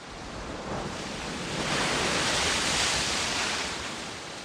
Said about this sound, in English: The waves of the Pacific Ocean roll across the beaches of California. By every reckoning, the world's biggest ocean, it's about 170 million square kilometers.